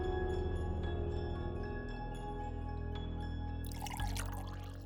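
Coffee pours steadily into a cup, close and clear, a continuous liquid stream with a faint rising tone as the cup fills, ending in a brief splashy burst. No one speaks.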